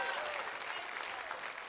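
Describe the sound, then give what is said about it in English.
An audience claps in praise of Jesus Christ, a dense, steady wash of many hands applauding at once, sustained and fairly loud throughout with no voices standing out. “Come on, somebody, and give the breaker a clap of praise right now.”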